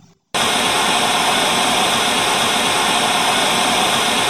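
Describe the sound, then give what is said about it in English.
A loud, steady hiss of television static cuts in abruptly after a brief quiet moment and continues unbroken to the end, dense and harsh with no voices over it. “Future Justin, insert a static.”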